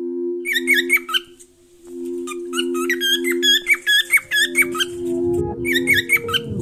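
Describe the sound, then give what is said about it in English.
A bird named Rigo squawks in rapid bursts of sharp, high, squeaky calls, pausing briefly between flurries, loud over a steady low droning tone. “Rigo is a bird.”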